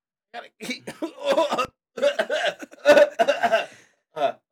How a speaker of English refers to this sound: excuse me, I should have pressed the cough button. I didn't remember to press the cough button